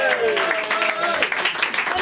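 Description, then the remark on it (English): A loud, continuous roar of audience applause for a musician fills the two seconds, dense clapping mixed with cheering and whooping voices from a large crowd. “Another roar of applause, please, once again, for …!”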